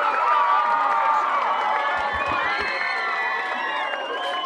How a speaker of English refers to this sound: I think, you know, she's mobile, so I'm going to give her an applause right now.